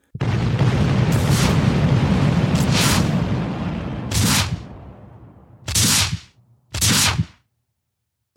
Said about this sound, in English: But then the sun sets, twilight gives way to night, and he can't see the flag anymore. All he sees now are bombs bursting and the red glare of ignited rockets screeching across the stormy sky.